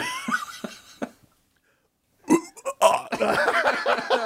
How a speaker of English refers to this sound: Oh man, nothing sounds worse than the forced burp. Oh, as stated earlier, it's on its way to a vomit, and it sounds very much like that.